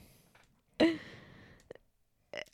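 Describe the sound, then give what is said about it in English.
A voice makes mouth-noise imitations of farts standing in for gunfire: one loud, sputtering burst that trails off, then two shorter, quieter pops, with no speech. “And the military of farts. The fart military.”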